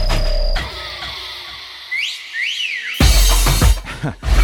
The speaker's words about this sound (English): That whistle wasn't intentional.